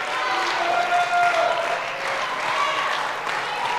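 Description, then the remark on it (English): A church audience claps steadily together in praise of God, a dense, continuous wash of applause with a few raised voices and cheers rising faintly above it. “Come on, clap until your spirit's encouraged.”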